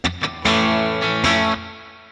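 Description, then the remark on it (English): Heavily distorted electric guitar plays chugging, sustained power chords, with two short stabs followed by longer ringing hits that cut off abruptly. It is loud, with no voices. “Yeah, you guys got some great guitar tones on that for sure.”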